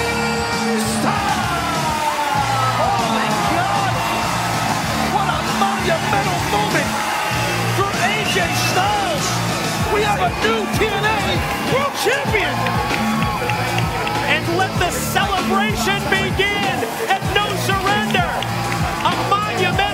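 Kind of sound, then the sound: crowd, wrestling arena crowd cheering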